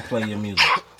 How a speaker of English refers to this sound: excuse me. Bless you, baby. Thank you. That was the best sneeze I ever motherfucker heard.